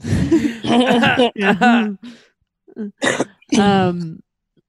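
Several loud bursts of throaty coughing and throat-clearing come in quick succession, with short pauses between them and a couple of softer hacks in the middle.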